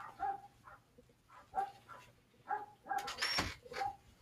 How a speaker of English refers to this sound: this dog better not, this dog is barking and I'm gonna kill him. Why is he barking? You hear this? Hold on, give me a second.